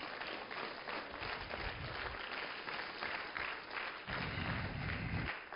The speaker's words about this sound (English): Give the Lord a hand clap if you think that's true.